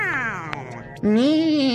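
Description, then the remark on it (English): A human voice imitates a cat meowing piteously: a drawn-out, gliding whine that fades, then a louder, wavering second meow, with no other sounds. “This supposedly cute kitty jumped back into the control room and started to float about while flapping all four of his hairy legs and meowing piteously.”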